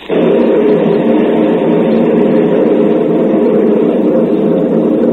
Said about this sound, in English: Yes. Thunder. Thunder and darkness around me.